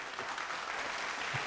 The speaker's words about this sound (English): Ladies and gentlemen, round of applause for that massive, massive segue.